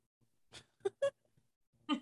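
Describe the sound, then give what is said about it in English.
A dog sniffs at the microphone: four short, breathy snuffling puffs in an irregular rhythm, each a quick burst of air noise separated by near-silence, with no talking. “The dog is sniffing the microphone.”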